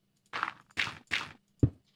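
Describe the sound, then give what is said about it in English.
A video game door closing: three quick, breathy scraping swishes in a row, then one solid, low thunk as it shuts. No voices. “Close the door.”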